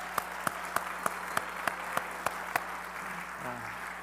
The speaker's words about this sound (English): And your work is not often applauded, but we're going to do that for you this morning. So thank you very much for your time, your service here.